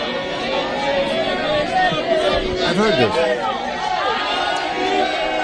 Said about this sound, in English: That's the crowd in Miami singing happy birthday to former President Donald John Trump.